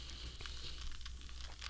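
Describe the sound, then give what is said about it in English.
Soft, quick taps and clicks in an irregular run, like fingers typing a to-do list on a phone or keyboard, quiet over a low steady hum, with no talking. “I'm typing this shit in my shit now to my to do list.”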